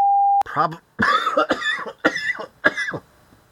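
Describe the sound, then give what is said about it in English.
A brief electronic beep, then a run of about five harsh, throaty coughs in quick succession, loud, with short gaps between bursts. “Do you have your water in your cough drops?”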